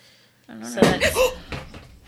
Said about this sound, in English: What the fuck was that? I just broke the chair.